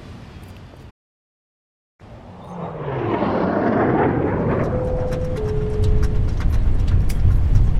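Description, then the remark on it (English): After a brief silence, a deep, steady rumbling roar swells up and holds loud, an airplane cabin shaking through turbulence, with a faint tone sounding briefly in the middle. “It's just turbulence. I'm a bit of a nervous flyer. It's a really safe plane.”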